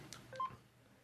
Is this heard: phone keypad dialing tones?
yes